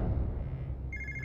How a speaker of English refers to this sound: Meanwhile, in the Sakamoto household, Regina's younger brother, Omar, hears the phone ring.